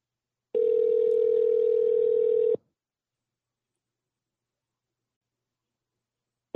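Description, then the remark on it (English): Ringback tone of an outgoing phone call to Drago's Restaurant at the Hilton Riverside, 2 Poydras Street: a steady electronic ring about two seconds long, a four-second silence, then the next ring just starting. It's clear, with no voices. “We've learned on the Slob Show that no one answers their phone.”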